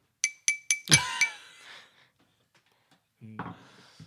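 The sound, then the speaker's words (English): Several bright, fairly loud glass clinks ring out in quick succession as a glass is raised at a feast. Their tones linger briefly before a voice begins to speak. “So I raise my glass.”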